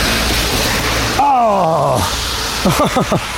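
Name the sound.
heavy rain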